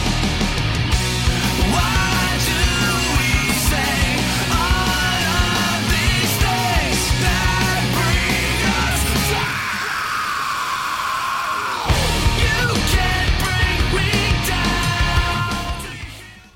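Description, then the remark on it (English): Loud, distorted rock music at the end of a song, with the singer yelling and then letting out a long, raw scream; the band briefly drops away while the scream is held, then crashes back in before the track cuts off. “where he's like yelling at the end, you'll never bring me back again. And then he just hits that scream and I was like, all right.”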